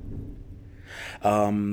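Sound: thunder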